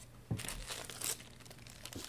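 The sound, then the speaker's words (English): Paper money bills crinkle in a quick flurry of dry, crackly rustles lasting a couple of seconds as someone slaps themselves in the face with the money, with no voices. “Just slap myself in the face with some money.”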